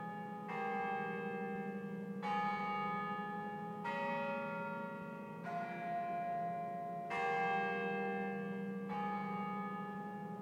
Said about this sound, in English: she had this bell tower built that actually played a motif from a hymn every quarter of an hour.